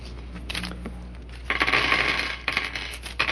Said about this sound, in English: I will roll the center table dice. So you will have 10 dice to choose from.